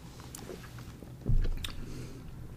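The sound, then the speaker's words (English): Someone takes a quiet first sip of stout beer, followed by soft wet mouth sounds of tasting and a low swallow thump midway, with no talking. “Cheers to the Master Craftsman, episode one. First sip.”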